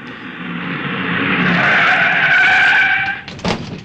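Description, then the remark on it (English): A car's tires screech loudly for about three seconds, the squeal building and holding before cutting off abruptly as the vehicle halts, followed by a short thud. “Have a look in the car, will you?”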